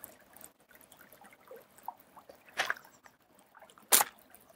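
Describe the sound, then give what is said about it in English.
Gentle water trickling and sloshing, with small scattered drips and splashes and two brief louder splashy bursts near the end. Fairly quiet, with no voices. “I wanted to sit quietly for the voice of the water to continue to begin again with you”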